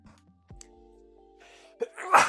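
sneeze

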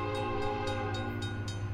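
freight train passing by

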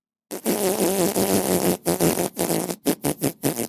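fart

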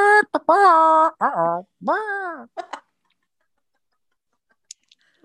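chicken clucking

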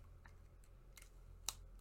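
pen writing on paper

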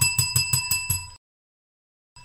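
small bell ringing

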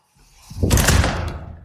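door opening and closing

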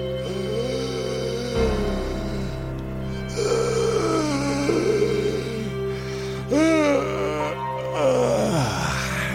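yawning

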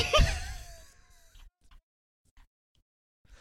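man screaming

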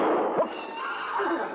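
horse whinnying

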